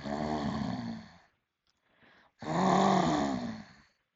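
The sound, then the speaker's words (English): Two long, loud snores from a sleeping dragon in a cave, with a quieter breath drawn in between, deep and rumbling, with no other sounds around them. “Someone was snoring. The sound was so loud that the whole cave was shaking.”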